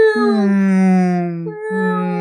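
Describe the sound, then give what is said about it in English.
A voice imitates humpback whale song with two long, moaning tones, the first sustained and slowly wavering, then a brief break before a second drawn-out note, with no other sounds. “That old whale song.”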